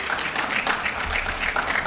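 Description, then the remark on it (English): An audience breaks into sustained applause for honorees at an honoring ceremony, many hands clapping in a dense, steady wash of sharp crackling that holds at an even loudness throughout, with no voices standing out. “So let's give our honorees another great big round of applause.”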